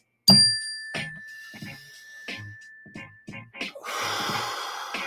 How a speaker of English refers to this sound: And anytime I bring up mindfulness, I got to do the mindfulness bell, everybody. Let's take a mindfulness breath real quick.